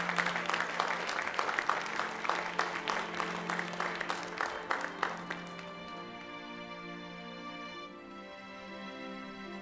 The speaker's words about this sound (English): let's give that choir a hand clap this morning. Thank you, God.